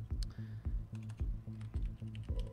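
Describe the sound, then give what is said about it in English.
Rapid, steady clicking of keys on a computer keyboard that is malfunctioning after water was dropped in it, fairly loud, with a regular rhythm of keystrokes and no voices. “My keyboard's fucking up because I dropped some water in it before.”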